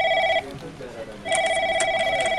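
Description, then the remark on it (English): A telephone rings twice at a police station, a bright electronic trill with a short pause between bursts, fairly loud over faint background murmur. “The next morning, he received a phone call at the police station.”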